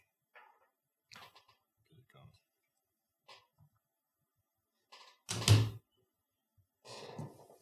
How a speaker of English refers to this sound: Dude, my chair is so loud. Is it because I'm fat?